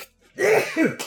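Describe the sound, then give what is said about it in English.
A sudden sneeze breaks out in two quick voiced bursts, a rising intake followed by a sharper expulsion, fairly loud and over within a second, with no talking. “Bless you, sir. Wow, that came out of nowhere.”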